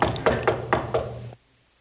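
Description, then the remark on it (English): Five firm knocks on a door in quick, steady succession, clear with a wooden thud, then abrupt silence. “If he's still knocking on the door and you have chaos within your house and tornado going through and you're like, why, where's God?”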